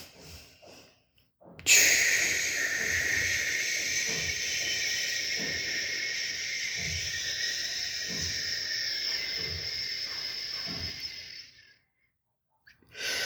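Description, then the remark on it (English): A single long, slow exhale pushed through pursed lips as part of a relaxation breathing exercise of 4 counts in and 8 counts out, a steady airy hiss held evenly for about ten seconds before tapering off, fairly loud with no talking. “It will allow you to manage the rate of the speed of your breathing out process better.”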